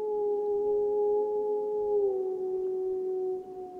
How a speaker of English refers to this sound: People come from all over the world to see and hear wild wolves in Yellowstone.